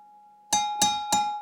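Three sharp, evenly spaced clinks of a glass object, each with a bright ringing tone that lingers between strikes. Fairly loud, with no talking.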